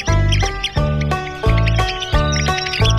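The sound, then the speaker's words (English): Agitated calls of a red-cockaded woodpecker: harsh, nasal squeaks repeated about twice a second in a steady series, loud and alone with no talking. “That's the agitated call of the red-cockaded woodpecker.”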